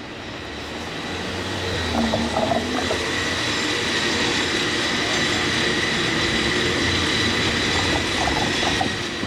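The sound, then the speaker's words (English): A San Francisco cable car rolls by with a steady, loud mechanical rumble and clatter, threaded with a high metallic whine and brief squealing tones early and again near the end. “San Francisco, those are your cable car sounds.”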